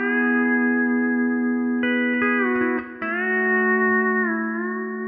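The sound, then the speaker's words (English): A steel guitar played with a Boyette's Glass Bar tone bar, heard as the amp signal only, rings out in sustained, layered harmonic chords, sliding smoothly to new pitches partway through, with a bright, shimmering, slightly echoing tone and no talking. “And the Boyette's Glass Bar.”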